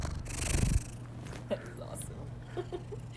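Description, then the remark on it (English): A male cat purrs right up against the microphone, a low steady rumble that runs throughout, with a burst of rustling handling noise at the start and a few soft clicks. “You wanna purr into the microphone? Here. Can hear him purring.”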